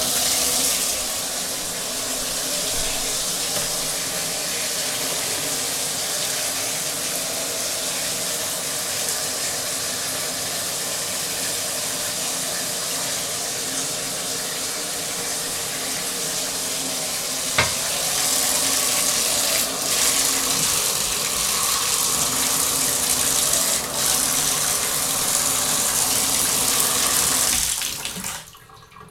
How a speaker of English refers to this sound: That was the sound of me washing pee off of me.